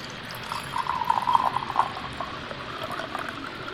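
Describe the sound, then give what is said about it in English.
Red Spanish wine glugs and trickles as it's poured into a glass, a bubbly, gurgling splash that swells for about a second before tapering into a softer trickle. No one speaks. “good Spanish wine. So, still going at it. Let me get you a pour going.”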